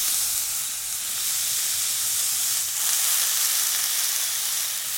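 A plant-based burger sizzles steadily in a hot frying pan, a loud, continuous crackling hiss with no talking, swelling slightly midway through.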